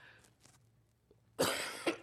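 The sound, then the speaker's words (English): A loud, harsh cough bursts out after a moment of near-quiet, followed by a second shorter hack. “Still working through this cough.”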